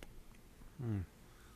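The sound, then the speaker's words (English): A short, loud gurgling slurp, like the last sips of a drink being pulled through a straw, bursts out once against a quiet background and cuts off after a quarter second. “Oh, damn, that gurgle.”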